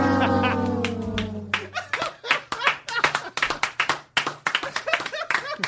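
A sustained, droning vocal tone fades out and gives way to scattered applause, sharp, irregular claps from a small group of hands that keep going steadily to the end.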